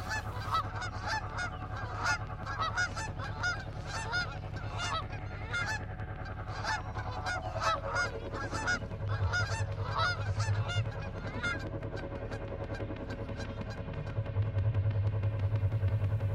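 A flock of geese honks loudly and continuously, calls overlapping in a busy chorus over a steady low rumble, then thinning out toward the end as the droning background grows.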